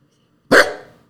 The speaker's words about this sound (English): There you go. You should have some good barks. There. That's Peach's controversial take.